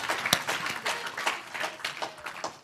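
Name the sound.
applause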